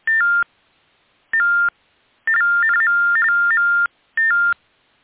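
Fax machine tones on a phone line: four loud bursts of paired electronic beeps, two short, then a long warbling run of alternating pitches, then another short burst, with no talking.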